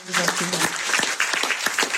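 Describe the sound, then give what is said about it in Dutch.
An audience applauds steadily, a dense wash of many hands clapping at a lively, irregular pace, loud and sustained throughout, with a faint voice briefly audible at the start, welcoming Minister of Social Affairs and Employment Karien van Gennep. “Welkom, minister van Gennep, geef haar een applaus.”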